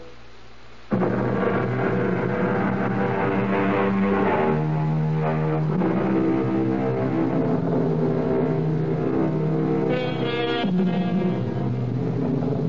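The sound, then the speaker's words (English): A loud, steady engine drone rises abruptly after a moment of quiet and holds throughout, its layered humming tones shifting slightly in pitch: the four engines of a jet in flight, heard in the cockpit 31,000 feet above the ground. “In the cockpit of a four-engine jet monster 31,000 feet above the ground, alone.”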